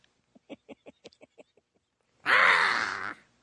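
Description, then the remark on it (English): A voice imitates a bird's caw: a quick series of short clicking syllables followed by one long, loud, raspy squawk held for nearly a second. “I sound just like that stupid-ass bird in the Dinosaur Planet Power Records Star Trek Adventure”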